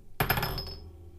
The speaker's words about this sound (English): So once I complete that, I'll choose the bigger marble and move it over to the empty glass jar.